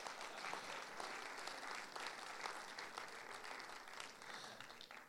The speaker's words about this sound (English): Give your pastor a round of applause.